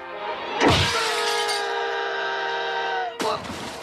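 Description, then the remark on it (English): Window glass shatters in a sudden loud crash as McBain punches his own captain out of a window, followed by a long bright ringing shimmer of falling shards, then a second sharp burst of breaking glass near the end. No one speaks. “Punched his own captain out of a window.”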